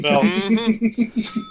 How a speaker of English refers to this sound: Click the bell. We also have a bell too, just in case you guys don't know. We have a bell. There we go. So you didn't mention that before we started. That's a surprise. I was not prepared for the bell. That was a surprise.